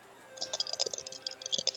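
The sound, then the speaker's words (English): A quick burst of dice being rolled in a game of blackjack, rattling and clattering, many small hard clicks tumbling close together for about a second, fairly quiet, with no one speaking. “Get that good dice sound.”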